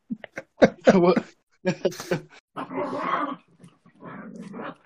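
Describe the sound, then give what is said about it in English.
Dogs playing roughly, with bursts of growling and snarling that come in uneven waves, while people talk over the noise. “Are your dogs fighting again? They're play. Yeah, they're playing, don't worry. They're noisy players, but they're not fighting.”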